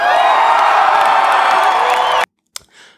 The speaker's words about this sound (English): I was just supposed to land the plane and say thank you, thank you, thank you to you, listener. Round of applause to you.